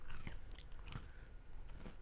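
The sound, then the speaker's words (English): Chewing of a crunchy hot dog, with a few sharp crackling bites standing out over steady, moist mastication noises, and no talking. “Pass me over one of those crunchy hot dogs.”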